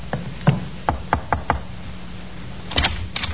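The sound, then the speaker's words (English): A sergeant knocks on the door of a second-floor front room: sharp knocks on a wooden door, an uneven run of about five raps, a pause, then a quicker double knock, clear against a quiet background. “The sergeant knocked on the door of the second floor front.”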